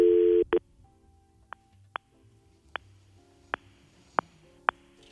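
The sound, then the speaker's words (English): A loud ringback tone of an outgoing telephone call made on Christmas sounds for half a second, then cuts off, followed by a series of sharp, irregularly spaced clicks over a quiet line. “Making the call live on Christmas.”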